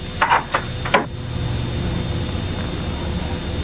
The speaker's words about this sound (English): All right, I'll knock.